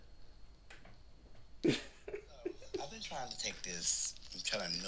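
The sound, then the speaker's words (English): Wet mouth sounds of a lollipop being sucked and licked as it is dipped in a bottle of water to melt it down, with a sharp smacking click near the start and a voice talking softly over the rest. “She's holding a lollipop, dipping it in, like, what, a bottle of water, melting it down.”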